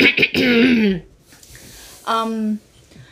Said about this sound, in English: Clearing my throat.